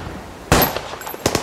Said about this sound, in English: And like everyone else, he was here in an illegal firing facility, training to become a shooter. He continued shooting. He was getting good at this.